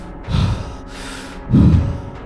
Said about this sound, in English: There's smoke now pouring out of that second story window of Town Hall, and your body is kind of just hanging out. At that first bit of fresh air, you gasp.